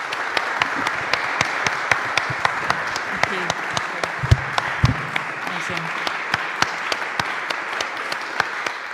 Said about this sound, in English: Can we give the panel a round of applause?